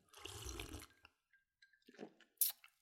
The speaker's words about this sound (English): So you can hear some ice in there. Feel free to give me a one-star rating for that. I'm going to sip this now.